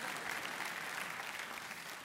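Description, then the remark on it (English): A crowd of people applauds steadily, a dense, even wash of clapping that holds at a constant level from start to finish. “You can clap.”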